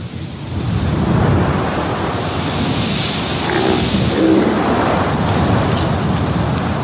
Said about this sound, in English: Sandstorms like these appear without warning and reduce visibility for days over areas the size of Britain.